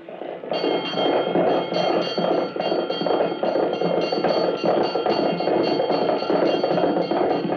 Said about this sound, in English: And back in those old days when the fire bells rang and all the church bells joined in to give the alarm,